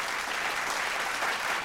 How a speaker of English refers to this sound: It's called Live Alkaline Water. Live Alkaline Water. We're going to clap that up.